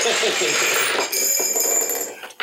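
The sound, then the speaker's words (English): Dice rolled on a table clatter and rattle across the hard surface in a steady, bright tumble lasting a couple of seconds, punctuated by a few sharper clicks before settling. “Oh, I actually have to whip out dice now.”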